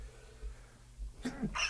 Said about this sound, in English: First time I sneeze on tape.